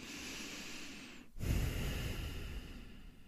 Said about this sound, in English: We can be grateful for this deep breath that we're taking.